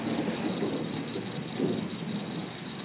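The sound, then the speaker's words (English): Steady rain falls in a dense, continuous hiss, watched from a porch, with a low rumbling undertone that swells briefly like thunder. No voices are heard. “We're just sitting here watching it rain and talking about Louisiana.”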